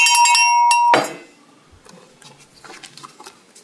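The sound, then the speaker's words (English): A small, bright bell rings in a quick burst of several strikes, its high metallic tone sustaining for about a second before fading into faint clinks and rustling. “I'll ring my bell.”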